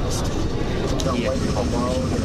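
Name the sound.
airplane cabin engine noise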